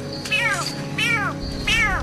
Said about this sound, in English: In the video, a man called Coyote Peterson catches a giant frog called the Smoky Jungle Frog. When he does, the frog makes this sound.